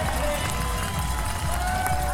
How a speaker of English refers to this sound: Well, here's Evie Richards coming through. Chucks a bead on to the side of the road. Listen to the crowd for Evie Richards here. Come on, Evie.